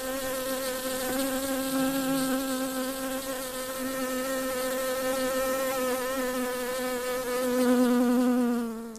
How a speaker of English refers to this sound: Yep, that was a bee.